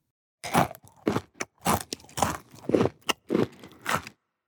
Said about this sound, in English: Chewing is when we use our mouths to break up the food we eat before we swallow.